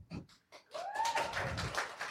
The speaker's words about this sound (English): A golf clap? Lukewarm.